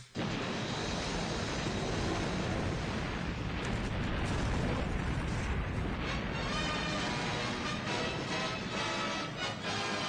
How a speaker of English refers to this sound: They literally have an explosion. They have an explosion behind Technicolor when they show it off, like provided by Technicolor, and just an explosion.